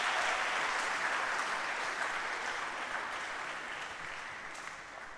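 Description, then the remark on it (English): A church audience applauds as a woman climbs up to share a testimony: a dense, steady wash of many hands clapping that holds fairly loud for several seconds, then tapers slightly toward the end. “Let's still be clapping as she's climbing up.”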